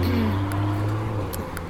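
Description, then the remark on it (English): A car engine hums low and steady, a continuous motor drone with a faint rise and fall, like a vehicle moving along a street, with no voices. “nice cars around.”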